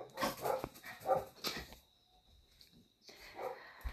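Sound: dogs barking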